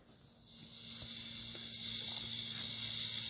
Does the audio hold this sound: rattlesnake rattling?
yes